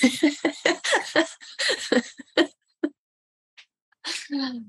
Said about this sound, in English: Bless you